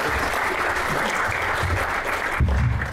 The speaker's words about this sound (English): Corin Hardy, everybody. You have to keep clapping till I get off the stage. No, seriously, keep clapping.